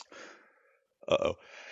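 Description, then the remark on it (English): A single sneeze: a drawn-out breathy inhale, a brief pause, then one sharp, loud explosive burst, followed by faint breathing. “Sorry, I had to sneeze.”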